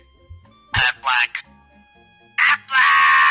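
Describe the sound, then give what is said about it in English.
A big, grown duck gives a series of loud, deep, raspy quacks: three quick ones close together, a pause, then two more, the last one long and drawn out. “Let's hear that duck.”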